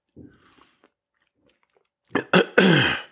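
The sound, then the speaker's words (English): A few quiet mouth sounds, then a loud slurp and gulp of coffee, ending in a satisfied voiced exhale. “So let me pause for just a moment to take a sip of my preferred beverage.”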